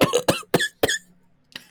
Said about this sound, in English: That was good coughs right there.